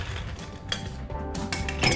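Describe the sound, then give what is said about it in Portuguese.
Ice cubes clink and rattle into a smoked glass while a cocktail is being made, several bright knocks in quick succession, with a low steady hum underneath and no talking. “Terminamos, a gente já pega o nosso copo, tira o excesso de fumaça, colocamos gelo.”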